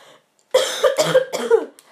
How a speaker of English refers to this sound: Wow, I'm just coughing all the time today.